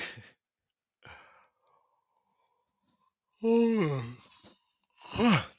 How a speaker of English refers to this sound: I am just yawning.